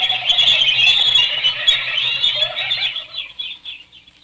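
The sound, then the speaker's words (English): A flock of birds makes a dense chatter of shrill squeals and low clucks while wings flap busily, the commotion thinning out and fading toward the end. No one speaks. “The birds.”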